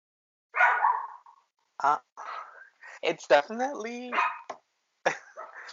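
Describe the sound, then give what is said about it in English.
A pet dog barks several times in short, uneven bursts, fairly loud, with a few yips and rough, growly edges mixed in between the barks. “Sorry, you guys, my dog.”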